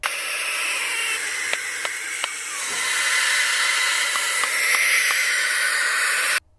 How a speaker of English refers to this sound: And if you're unaware of the noise that a barn owl can make, let's listen to that right now.